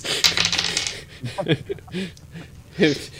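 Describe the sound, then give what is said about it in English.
A brief clatter of damage dice tumbling across a hard tabletop during a tabletop role-playing game, quick bright clicks at the start, followed by voices murmuring and talking. “These damage dice are pretty good though.”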